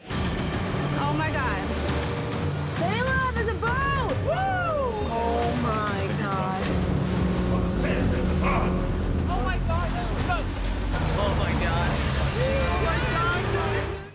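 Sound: boat arriving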